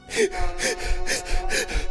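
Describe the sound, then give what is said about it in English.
A woman's rapid, ragged breathing with sharp gasps, about five quick breaths in two seconds, fairly loud with no talking. “Her breathing accelerates.”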